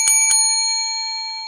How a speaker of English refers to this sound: So we're just going to use the desk bell and you guys are going to like it.